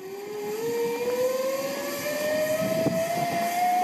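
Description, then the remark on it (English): A steady airplane engine roar fills the air, its whining tone slowly rising in pitch as the aircraft passes overhead, with no voices over it. “Is it a bird? Is it a plane?”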